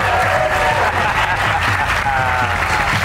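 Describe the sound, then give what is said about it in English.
An audience claps steadily for about three seconds, a loud, dense wash of hand claps with a few voices and cheers mixed in underneath. “Don't you dare applaud him.”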